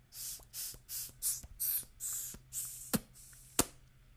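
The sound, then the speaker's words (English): Short, airy sucking puffs drawn through a vape pod with all of its airflow holes covered, about seven dry puffs in a quick steady rhythm, fairly soft, followed by two sharp clicks; no one speaks. “And now you try to cover up all of the airflow holes and give it some dry toots, what I call dry toots.”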